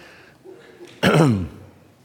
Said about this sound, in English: Oh, yeah. Now I'll burp. That'll add to the gravity of the message.